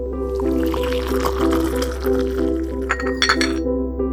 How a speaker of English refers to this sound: And she pours another cup of tea and then puts it in the second spot across the desk and then goes and sits back down.